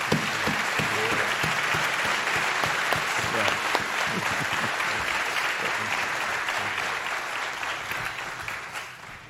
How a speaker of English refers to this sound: And I just want to say, thank you. Can we give a round of applause to this group?